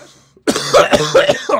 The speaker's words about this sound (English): I started coughing this bitch.